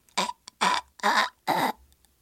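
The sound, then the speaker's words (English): A girl in a video imitates choking while holding a string around her throat, four harsh, gagging bursts in an uneven rhythm, each rough and throaty with brief silences in between, fairly loud and without any words. “And then the girl is just kind of making the fake choking sound, like.”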